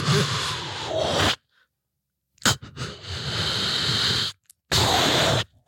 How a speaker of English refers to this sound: It's 2 a.m. I wake up to this. He's just breathing real hard into you.